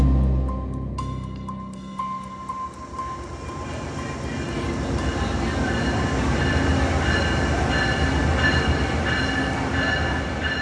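A train rumbles at a train station, its steady low roar building as railcars roll past with metallic rattling and faint wheel squeals, a continuous loud rail sound with no voices.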